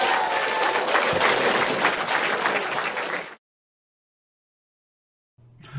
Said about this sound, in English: Thank you, everybody. Big round of applause for Ernie.